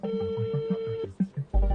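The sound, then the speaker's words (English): A phone rings on an outgoing call from CBC News to the original owner of a car stolen in Toronto and found in West Africa: a steady, mid-pitched ringback tone holds for about a second, then cuts off, followed by a few brief muffled bursts and a low thump. “I'm gonna phone him.”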